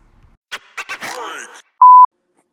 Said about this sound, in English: I was getting a phone call. Could you hear me?